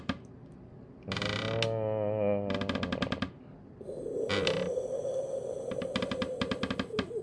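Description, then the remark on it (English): An old, janky desk creaks and groans in loud, wavering bursts during a show recording, with rapid ratchety clicks and a strained, grinding stretch toward the end. No one speaks. “No, this is just this fucking janky ass, old ass fucking desk.”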